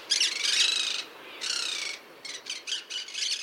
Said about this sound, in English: Escaped monk parakeets now have self-sustaining populations in many areas across the country. Chicago, Dallas, New Orleans, Portland, Oregon, and Bridgeport, Connecticut, among others.